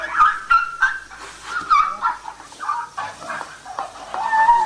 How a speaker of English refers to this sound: Next up, we have something that only the Asian elephants do, which is called chirps and squeaks.